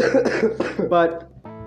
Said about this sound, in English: I'm coming off of a little sickness. So if you hear coughing from me throughout this entire thing, that's why. Don't worry. It annoys me as much as it annoys you.